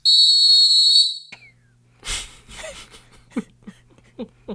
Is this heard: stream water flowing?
no